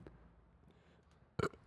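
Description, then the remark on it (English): A single short, loud burp erupts near the end after a stretch of quiet. It is abrupt, with no talking around it. “That's not no more burp.”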